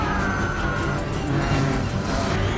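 A wheezing, strained engine fails to start, churning steadily for a few seconds, with a thin whine riding over a rough, rumbling low end and no one speaking.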